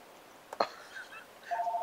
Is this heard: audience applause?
no